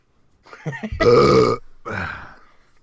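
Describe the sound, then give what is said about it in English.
A single loud, abrupt sneeze bursts out, preceded by a brief sharp intake of breath and followed by a softer, trailing exhale. “Bless you.”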